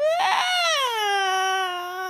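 Soft, whimpering crying of a little girl hiding behind a sofa: a single drawn-out, high wavering wail that rises slightly, then slowly sinks lower in pitch over about two seconds, heard on its own with no talking.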